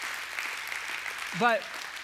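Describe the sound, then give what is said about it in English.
An audience gives the Lord a hand clap of praise, a steady wash of many clapping hands throughout, with one voice rising in a short exclamation near the end. “Let's give the Lord a hand clap of praise for who he is.”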